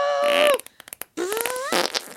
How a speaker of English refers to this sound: did you just fart? Shut up. I did.